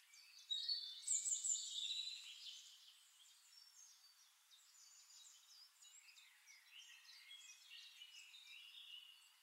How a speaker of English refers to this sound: The sun is warming your face and you lie there on the grass in the sun, listening to all the sounds around you. Birds singing in the distance, the breeze rustling the grass.